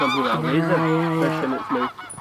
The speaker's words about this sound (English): Yeah. It's like the Canada geese kicking off.